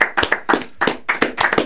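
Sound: clapping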